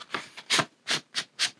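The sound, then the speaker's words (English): A paper inner sleeve is tugged out of a vinyl record jacket in a series of about six short, scratchy rubbing strokes, fairly steady in rhythm and moderately loud, with no talking. The sleeve is hard to get out and scrapes across the paper inside the jacket. “See how hard that is to get that sleeve?”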